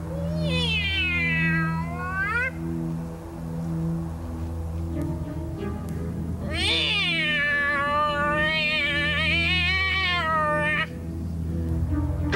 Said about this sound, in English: Here, kitty, kitty, kitty. Stupid cat. Here, pussycat. Kitty, kitty, kitty.